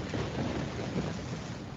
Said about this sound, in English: It's raining. Don't go outside without umbrella.